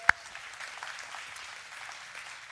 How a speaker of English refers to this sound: Let's give him a round of applause, everyone.